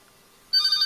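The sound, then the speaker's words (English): A telephone starts ringing abruptly partway through, a bright, steady electronic trill that cuts in loud after a quiet stretch and continues to the end. “Catch that phone, somebody.”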